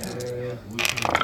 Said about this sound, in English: Right, roll some dice. I've got a single double support.